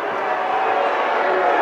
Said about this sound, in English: And the crowd vociferously booing the officiating crew on that one. The not winning friends and influencing people here at Brownson Arena.